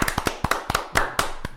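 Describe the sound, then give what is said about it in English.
A short burst of sharp hand claps, roughly eight or nine slightly uneven, fairly loud slaps in quick succession, like a few people clapping together with no voices. “Clap it up.”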